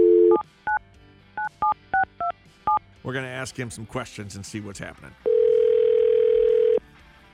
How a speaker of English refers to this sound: We're calling him.